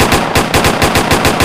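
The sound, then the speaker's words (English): A rapid burst of automatic gunfire played as a sound effect from a soundboard button, about a dozen sharp, evenly spaced shots fired in quick succession, loud with no voices. “This is a gunshot.”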